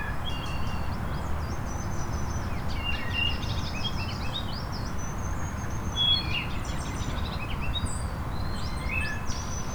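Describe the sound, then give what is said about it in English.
A wood thrush, perched on a branch in the shade, sings in clear, fluting phrases mixed with other high chirps and tweets, heard over a steady low background rush of noise throughout. “This wood thrush is perched up in a branch in the shade.”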